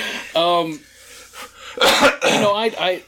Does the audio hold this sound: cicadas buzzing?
no